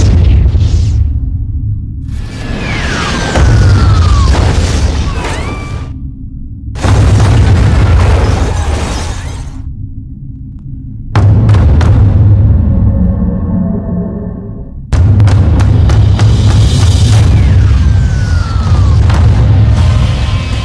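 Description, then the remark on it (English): Loud explosions from the film Armageddon boom one after another, with deep rumbling low end and crackling, crashing debris, broken into several abrupt bursts. No one speaks. “like damaging bridges and roads and like explosions.”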